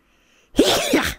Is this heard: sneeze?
yes